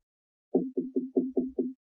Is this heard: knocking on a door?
yes